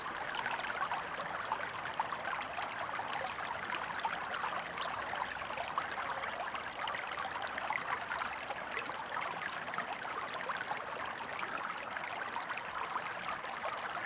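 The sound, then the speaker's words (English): A small stream, Load Pit Beck, babbles and gurgles steadily under a little footbridge just before it flows into the River Aire, at the boundary between Baildon and Bingley parishes: an even wash of running water with no talking and no breaks. “As we do so, we're crossing Load Pit Beck, just before it flows into the River Aire.”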